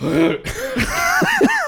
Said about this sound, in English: Sorry, I burped, and it was just disgusting.